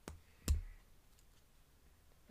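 A few sharp computer keyboard clicks at uneven intervals as someone tries to spell a word, one noticeably louder than the rest, with faint softer taps in between and no talking.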